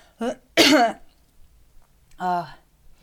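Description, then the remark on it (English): Two short, raspy coughs close together, then after a pause a throaty, voiced clearing of the throat, with quiet in between. “Sometimes the releasing also comes with coughing, or sometimes it's just that you have to take a sip of water.”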